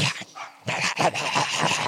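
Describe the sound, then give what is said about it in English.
A dog eager to lick a person's leg lets out a short whine, then a rapid series of excited barks and yips that carry on loudly with no one talking. “That dog was desperate to lick my leg.”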